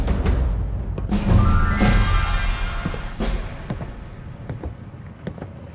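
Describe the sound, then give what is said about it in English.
Heavy thuds and bumps as a woman struggles to force open the door of an upstairs room, with a creaking groan while it gives way, followed by scattered footstep taps. No one speaks. “All right, she's walking me back into this upstairs room. And she's having a hard time opening the door.”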